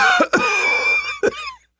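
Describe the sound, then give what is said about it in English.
Loud, harsh coughing: a quick pair of rough coughs, a strained wheezy stretch, then another sharp cough before it trails off. No one speaks. “coughed loudly once more.”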